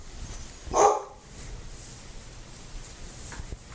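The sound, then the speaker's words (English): A single sharp, loud bark from a deaf dog rings out near the start, followed by a few seconds of quiet ambience with no further barking. “Brief break from the deaf dog.”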